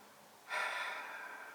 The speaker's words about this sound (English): Breathe in and I breathe out.